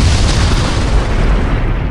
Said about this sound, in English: Did Jerry perish in the explosion? Will the detectives make it out of the cannery alive?